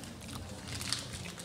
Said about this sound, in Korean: 되게 귀에서 쩝쩝거린다.